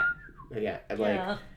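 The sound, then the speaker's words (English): A short whistled phrase from a song, a couple of clear notes sliding downward, quickly gives way to a louder voice that carries on in the foreground. “I just kind of like the little whistle that they do.”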